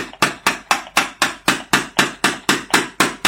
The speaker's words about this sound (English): Right over here is, let's use this, which people are loving, the mallet and the stick. So I'm going to put it right on the right shoulder here, like this.